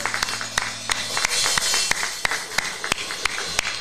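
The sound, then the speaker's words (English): An audience claps their hands together as a clap of praise, a steady wash of applause with sharper individual claps cracking through at an uneven rhythm for about four seconds, with no talking. “Give a hand clap of praise.”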